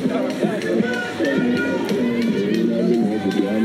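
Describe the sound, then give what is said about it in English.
An enthusiastic crowd cheers across the street, many overlapping voices shouting and calling out in a steady, loud roar that holds for the whole few seconds without a break. “There's some very enthusiastic people across the street.”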